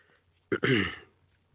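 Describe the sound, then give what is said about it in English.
A single cough, a sharp onset followed by a short rough, throaty rasp, with no talking around it. “Excuse me for coughing.”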